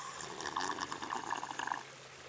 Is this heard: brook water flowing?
yes